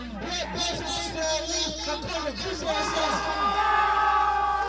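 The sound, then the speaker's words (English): A loud crowd roars and shouts together, many overlapping voices rising into sustained cheering toward the end, filling the whole scene without pause. “He just rocked that crowd, baby.”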